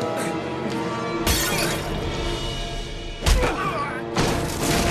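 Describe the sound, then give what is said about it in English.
A glass bottle is smashed over someone by the scientist character McKay in a TV scene, with a loud, bright shatter, followed by crunching debris and a heavy thud, then a second burst of breaking glass near the end. “Did he just smash him with the control crystal? No, it was a bottle.”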